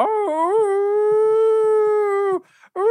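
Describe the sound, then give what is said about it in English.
A person imitates the howl of a hound dog sitting on a bed: one long, loud, sustained howl that rises at the start and holds steady for about two seconds, then breaks off before a second howl begins. “Who's sitting on a bed and he's doing his hound dog thing.”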